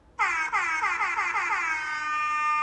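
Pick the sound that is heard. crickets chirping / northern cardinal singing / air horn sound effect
air horn sound effect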